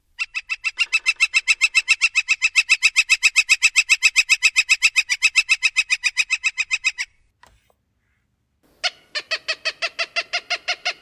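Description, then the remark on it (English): A northern flicker gives a long, loud, rapid series of ringing notes for several seconds, then stops; after a brief pause a Cooper's hawk begins a harsh, rapidly repeated call. “First the northern flicker, and then the Cooper's hawk.”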